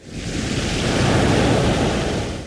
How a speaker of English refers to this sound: The ocean, it's parting.